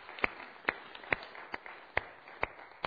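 Applause from an audience giving God glory for His goodness: about seven sharp, crisp claps stand out in a steady rhythm, roughly two per second, over a soft wash of scattered clapping. No one speaks.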